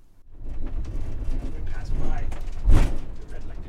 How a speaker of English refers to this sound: So we were on a city bus going from downtown Tijuana to Pedro West. That's the newest pedestrian crossing at the San Isidro Port of Entry.